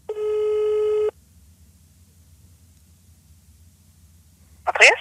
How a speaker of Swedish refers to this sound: vi ringer upp en liten Therese. Mm-hmm. Hoppas hon svarar då.